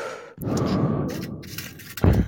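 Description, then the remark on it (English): Deep, ASMR-style breathing into a microphone: one long, breathy exhale lasting over a second and a half, then a brief pause and another sharp breath at the end, with no talking. “Isn't that ASMR? Isn't that what it's all about? Just like, yeah, it's like deep just, breathing”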